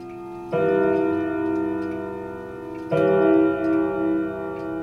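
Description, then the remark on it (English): A clock chimes twice after a few hours of repairs, each mellow, bell-like stroke ringing out with rich overtones and lingering before the next. No voices are heard. “After a few hours of tender repairs, a chime, a sound seeming to bring back the presence of Leona's husband.”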